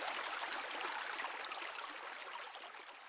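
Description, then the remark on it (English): A babbling brook flows steadily, its water a constant bright hiss with small splashes and gurgles, even throughout, with no voices. “Babbling Brook: Stream Sound for Relaxation”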